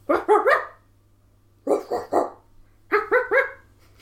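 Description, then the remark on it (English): A person imitates dog barking in three quick bursts of about three barks each, imitating a Yorkshire Terrier, a Basset Hound and a Chihuahua, separated by short pauses, each burst in a slightly different style, loud with no other talk. “Give me a dog and I'll bark like it.”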